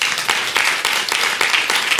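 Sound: audience clapping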